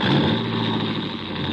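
A stolen coupe's engine roars loudly, revving hard with a dense, throaty rumble as the car pulls away, sustained throughout with no voices.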